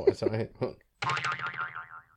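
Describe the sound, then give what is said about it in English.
After a few quick vocal syllables and a brief pause, a voice makes a wobbly, springy twang sound that warbles up and down for about a second before trailing off. “You could do a twang.”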